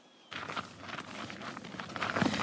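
Footsteps crunch steadily over nearly freezing farm fields at Stone Barns on a November afternoon, a continuous rustling, gritty texture with repeated soft impacts, moderately loud and unaccompanied by talk.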